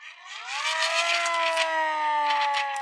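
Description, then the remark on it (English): A police siren wails as police arrive, its tone sweeping upward in the first half second and then holding a steady, loud, buzzy pitch for a few seconds, with no voices over it. “Esther, the police!”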